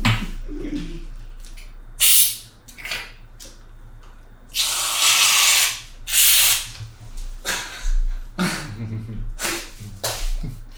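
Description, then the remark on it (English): An aerosol can of whipped cream sprays whipped-cream shots onto cocktails in several hissing bursts, one long sputtering spray in the middle and shorter squirts around it, with no talking. “Honestly, the whipped cream, whip shots, makes any cocktail stunning.”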